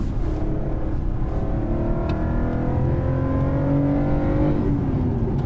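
A car engine roars steadily at high revs, loud, its pitch climbing and shifting as it drives fast along a course at an indicated 80 miles per hour, with no voices over the continuous mechanical drone.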